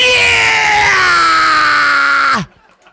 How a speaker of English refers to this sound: That scream was gonna make nobody come. You heard everybody's fucking ears just now.